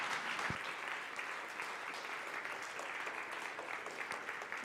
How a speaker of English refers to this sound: Can we give him some kind of applause?